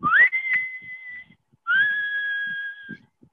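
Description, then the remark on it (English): A person whistles two sustained notes, the first swooping up and holding steady, then a brief pause before a second long rising note, imitating the strikeout whistle played at Yankee Stadium when the Yankees strike someone out, clear with no talking. “But, you know, like, when the Yankees strike someone out, there's that whistle that goes.”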